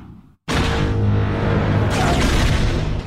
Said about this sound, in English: Just the explosion. Play just the explosion.